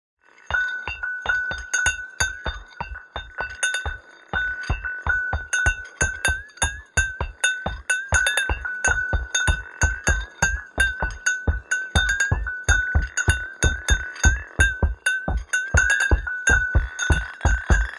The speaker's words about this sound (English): I am very curious about the other sounds that you used, the Fanta bottle, the wooden pallet, and the plastic bag. So let's give a listen to the Fanta bottle.